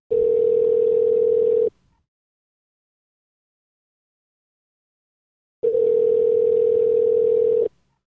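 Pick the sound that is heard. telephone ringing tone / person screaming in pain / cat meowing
telephone ringing tone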